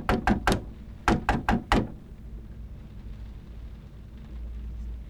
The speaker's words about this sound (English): There is a knock.